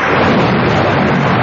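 Heavy rain pours down in a dense, steady roar that stays loud and unbroken throughout, with a deep rumbling low end beneath the hiss and no voices.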